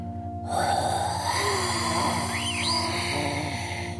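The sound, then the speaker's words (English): A huge, rough dinosaur growl bursts in after a brief silence and rumbles on steadily, with a pulsing low buzz and a wavering higher tone riding on top. “That's when you hear a huge growl.”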